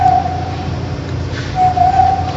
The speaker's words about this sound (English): You need to use your lips, you need to be able to control your breath, so it takes a lot of control to be able to teach yourself how to whistle. I actually didn't think that was possible for orangutan to learn how to whistle on.